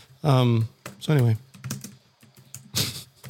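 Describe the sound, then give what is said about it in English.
Scattered clicks of typing on a computer keyboard, irregular, with two drawn-out vocal hums breaking in between the keystrokes. “I can hear you tapping on your keyboard.”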